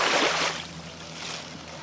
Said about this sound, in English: And you know what? Yeah, let's ride out on some waves this time.